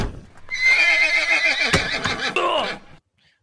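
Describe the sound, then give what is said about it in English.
A horse lets out a loud whinny lasting a few seconds, wavering and trailing off, with a couple of sharp hoof clops mixed in before it stops abruptly, startled by a camera flash as a daguerreotype is taken. “President, I tried to warn you to hold your horse for the flash.”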